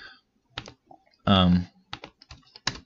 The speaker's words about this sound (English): I'm trying to look it up on Google right now. You can probably hear me typing.